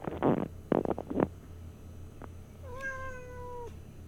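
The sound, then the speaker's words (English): A cat growls low in a few rough bursts, then after a pause lets out a long, drawn-out meow, over a quiet background hum with no talking. “Sounds like he's gonna get really mad in a second, and he sprayed on the TV as well.”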